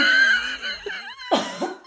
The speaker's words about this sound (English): She's coughing.